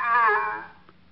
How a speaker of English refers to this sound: Every time someone mentions your name, he kind of honks and raises a weak flipper